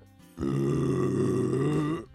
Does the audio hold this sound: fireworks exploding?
no